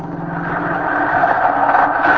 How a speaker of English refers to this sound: Ah, the bus.